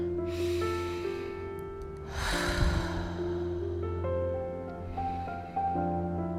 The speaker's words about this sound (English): So if you are able, you can at this point in time close your eyes, relax. If not, you can just simply focus on these words, breathing in and out 3 times.